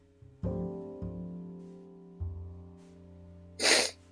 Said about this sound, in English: So forgive me for the sniffles, but I will not apologize for my tears, because I know there's many mourning.